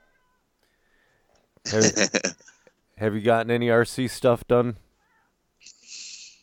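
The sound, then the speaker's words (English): A cat lets out a single loud meow, followed by a man asking a question; a brief soft hiss trails off at the end. “Hey, the cat's early tonight.”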